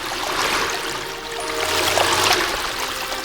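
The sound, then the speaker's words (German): A steady fountain jet, an arm-thick stream rising about 3 meters from Neptune's fist, splashes down onto the moss-covered heads of mermaid statues: a continuous, dense, hissing wash of falling water with bright spattering, fairly loud, with no voices. “Aus Neptuns Faust steigt ein armdicker Strahl auf 3 Meter Höhe empor und fällt dann plätschernd auf die etwas bemoosten Köpfe barbusiger Nixen.”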